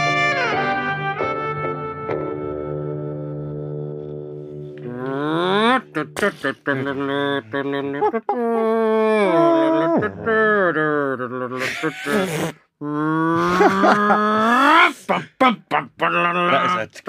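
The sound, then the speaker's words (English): The theme tune of the TV show Johnny Briggs opens on a held, steady chord for about five seconds, then breaks into a lively melody with sliding, voice-like notes and short rhythmic hits, staying loud throughout. “That's the Johnny Briggs theme tune for anyone who doesn't remember.”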